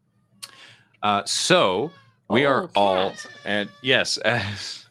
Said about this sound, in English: As indicated by the fact that there is a cat screaming for attention, we're all from home